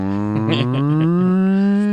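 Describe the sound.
A single long, loud cow moo, its deep droning tone sliding slowly upward in pitch and holding steady for about two seconds, with no talking.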